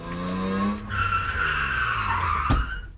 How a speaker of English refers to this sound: today's noise will be a car screeching to a halt and then hitting a pedestrian.